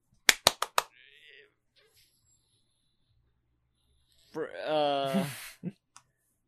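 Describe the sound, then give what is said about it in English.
Four sharp, evenly spaced hand claps, done as the Friends clap, ring out in a quick, loud rhythmic burst, followed by a short silence and then a brief stretch of someone speaking. “But I did the Friends clap.”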